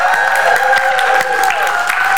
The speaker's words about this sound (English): Give the Lord a good hand clap if you will.